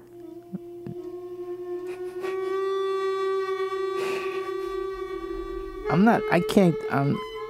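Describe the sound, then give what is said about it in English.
A long, steady whale moan with rich overtones holds for several seconds, then gives way to a burst of higher, wavering squeaks and warbling calls near the end. “Time flies when you're listening to whale song.”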